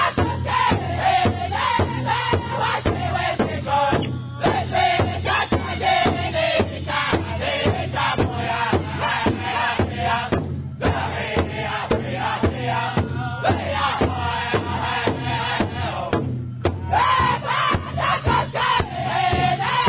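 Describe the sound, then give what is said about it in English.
A Crow Hop style northern powwow song: a group of singers in high, strained voices over a steady pounding drum, the chanting phrases broken by brief pauses before starting again. “This is in the Crow Hop style”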